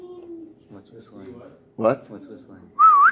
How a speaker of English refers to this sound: What's whistling? What? What's whistling?